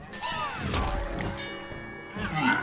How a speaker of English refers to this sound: They use a lot of high-pitched sounds in this game, I noticed. Like a lot of bells and things that make like high-pitched sounds and stuff.